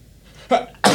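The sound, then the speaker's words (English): A single loud sneeze from someone with a cold: a quick sharp intake of breath, then an explosive, breathy burst, with no talking around it. “Bless me. Bless you.”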